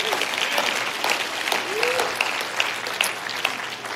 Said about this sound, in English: If you believe it, clap your hands to the Lord.